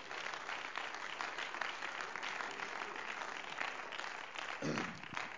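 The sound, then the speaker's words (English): A church audience claps their hands in praise to the Lord, in steady, dense applause that fills the whole clip at a fairly even loudness, with a brief murmur of voices near the end. “Would you clap your hands and praise to the Lord?”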